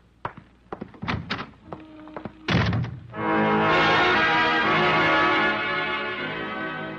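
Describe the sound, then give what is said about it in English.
A few scattered knocks and thumps lead into a solid door thud as someone leaving shuts the door, followed at once by a long, loud ringing chord that slowly fades. “I can find the door.”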